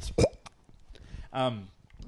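A short, throaty burp after drinking frothy beer, preceded by a quick wet pop and surrounded by faint mouth noises and breathing.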